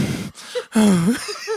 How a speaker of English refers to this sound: And I'm like, breathing heavy, because I was holding my breath trying to say the other word.